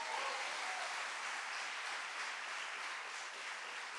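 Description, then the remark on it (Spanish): Steady applause from a crowd applauding for Jesus during a sermon, a dense wash of many hands clapping at an even level for about four seconds, with no voices standing out. “Un aplauso a Jesús.”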